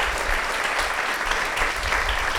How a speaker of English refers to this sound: We're going to have questions from the very large audience that's here at the Book Club, but we'll give a round of applause to Peter Heller, his latest book, The Last Ranger.